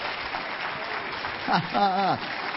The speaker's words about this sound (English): Give Him a hand clap, somebody.